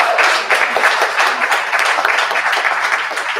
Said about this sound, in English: I mean, y'all should give yourselves a round of applause. Thank you so much.